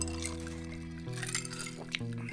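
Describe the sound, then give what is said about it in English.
Ginger beer pours steadily into a glass, a continuous gurgling stream whose tone shifts upward in a few steps as the glass fills, with no talking. “Now, I will add that I usually like it with a little bit of rum, maybe a lime, but we just got the ginger beer here. Yes. Cheers. Thanks for bringing the ginger beer.”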